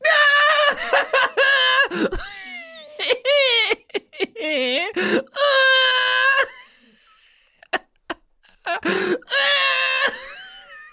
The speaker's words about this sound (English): You're screaming. Are you gonna say you're not laughing?